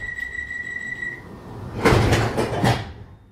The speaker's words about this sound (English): This is a Bakerloo line train to Elephant and Castle. Please stand clear of the doors.